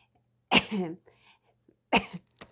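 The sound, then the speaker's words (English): Two harsh coughs from a sick person, about a second and a half apart, the first trailing into a raspy, voiced rattle, with faint breathy sounds between them and quiet otherwise. “And I'm sorry, I'm so coughing from the sickness that I have.”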